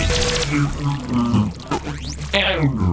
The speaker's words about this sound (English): I'm sorry to waste beer by pouring it on you, but you need to wake up,